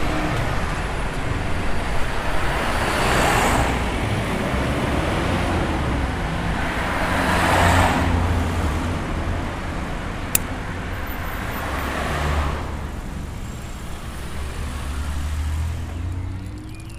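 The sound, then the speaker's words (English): Cars pass along a busy street in Wellington in a steady stream, several louder swooshes rising and fading as vehicles go by, over a constant low rumble of road traffic. No one speaks. “But I'll have to contend with something on my way, which won't be allowed at the Open Streets event. Cars.”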